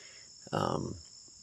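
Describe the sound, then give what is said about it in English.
A bee buzzes loudly for about half a second, then fades away against a steady, high-pitched insect hum in the background. “Talking to another bee.”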